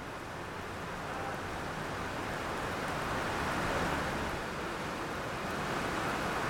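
rain falling

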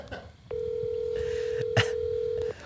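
phone keypad dialing tones

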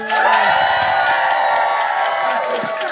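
audience cheering

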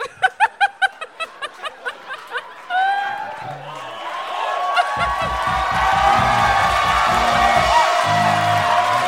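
audience applause and cheering

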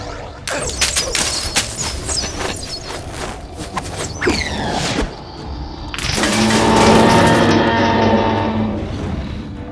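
volley of gunfire

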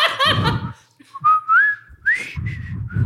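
person whistling a tune

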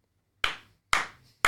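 slow hand clapping

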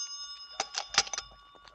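telephone ringing

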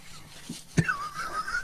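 blowing nose

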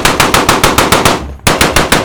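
machine gun fire

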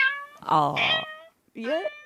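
cat meowing sound effect

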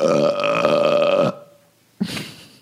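burp

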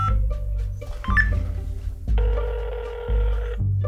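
telephone being dialed

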